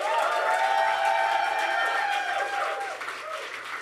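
A crowd applauds loudly and steadily, with dense clapping and some whoops and cheering mixed in, the noise easing slightly toward the end.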